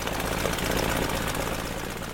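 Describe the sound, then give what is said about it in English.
A Tiger Moth biplane engine drones steadily, a continuous low, rumbling roar with a rough, throbbing texture and even loudness throughout, with no voices over it. “I'll come to that in a moment, but first, let's have a look at the Tiger Moth itself.”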